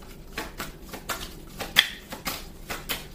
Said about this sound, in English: And may I have some more cards, please? The star was at the bottom of the deck before I started shuffling.